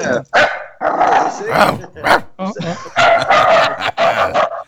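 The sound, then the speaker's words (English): A shepherd dog barks excitedly in a rapid series of loud bursts, with people talking over and between the barks. “We have a bunch of dogs too, so like now my dog is all excited.”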